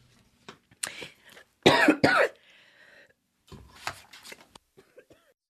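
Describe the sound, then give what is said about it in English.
A loud burst of two harsh coughs sits in the middle, flanked by softer throat-clearing rasps and scattered short breathy noises before and after, with no words spoken. “Oh, excuse me. Sorry. I have a frog in my throat.”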